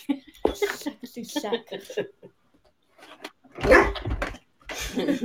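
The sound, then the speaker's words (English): A single loud dog bark cuts in, a short sharp burst in the middle of casual conversation, with people talking before and after it. “Your dog agrees with me, by the way.”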